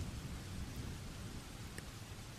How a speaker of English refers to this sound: You shouldn't be out here in this storm.